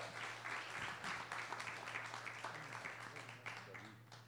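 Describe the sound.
A crowd applauds steadily, a dense wash of many hands clapping at once, moderately loud and sustained throughout, with a low electrical hum and faint murmuring voices underneath.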